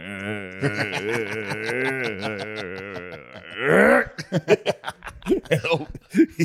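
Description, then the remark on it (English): A voice imitates a long, drawn-out fart with a sustained buzzing, wavering tone lasting several seconds, then breaks into choppy laughter. “We're talking 15-second farts.”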